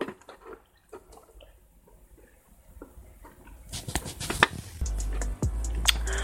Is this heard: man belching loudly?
no